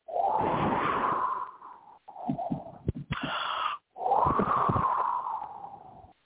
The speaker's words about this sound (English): Ah, join me now in the ghost town. And look at your little tumbleweed, and here's a very lonesome, scary sound of the wind.